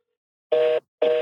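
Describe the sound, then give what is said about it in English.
Two short, steady electronic telephone tones sound one after another with a brief gap between them, fairly loud, with no talking, as a landline at a cottage is called. “Let's see if it works. Because sometimes when I hit the voicemail, I'm like, oh, man, that is me.”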